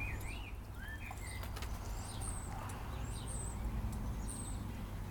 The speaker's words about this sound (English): It's a beautiful spring day, the birds are singing, the dog is pottering about, and I am heading off down to the potting shed to do some seed sowing.